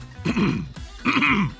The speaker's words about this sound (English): To clear my throat here.